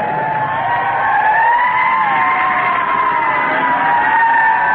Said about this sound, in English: There comes a fire truck behind us! I gotta pull over!